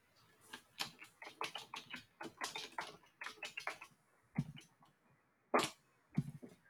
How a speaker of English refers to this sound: so you can hear me typing. That's what I'm doing, is pulling up the information about the song.